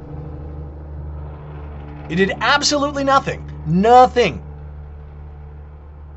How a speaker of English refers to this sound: I do apologize for that giant truck that decided to drive by just now, right as I was saying it did nothing, but whatever.